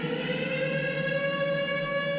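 A Shabbos siren sounds on a Friday, announcing that Shabbos is coming, as a steady, sustained tone rich in overtones. It holds one pitch throughout at a moderate, even level, with no voices over it.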